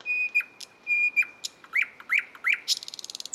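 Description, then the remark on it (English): A nightingale sings alone, mixing long pure whistled notes, rising slurred phrases and sharp chips, ending in a rapid, rattling trill of repeated notes. “Nearly half of all the birds on Earth are what is known as songbirds, and most of them are able to produce elaborate songs, like this one from the nightingale.”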